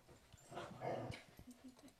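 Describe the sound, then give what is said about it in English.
A dog whimpers as leashes are put on the dogs: a drawn-out, high whine in the middle, followed by several short, softer whimpering yelps toward the end. No one speaks. “Are you putting the leashes on the dogs here?”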